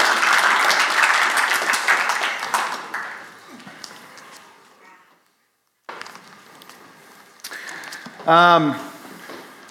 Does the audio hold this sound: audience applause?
yes